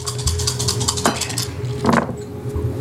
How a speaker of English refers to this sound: So I have a crap ton of dice here. Good. 10. Success on 5s and 6s.